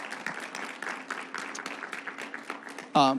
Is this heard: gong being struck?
no